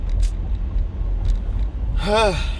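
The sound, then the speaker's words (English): A steady, low engine rumble fills a car interior from start to finish, and a brief voiced exclamation rises and falls near the end. “You are in the car with ….”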